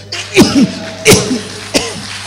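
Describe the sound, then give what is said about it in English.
A voice imitates a child's sneezing: three short, sharp 'achoo'-like bursts spaced evenly apart, fairly loud, with no talking in between. “Then all of us around something five, the child sneezes.”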